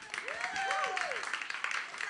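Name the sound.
clapping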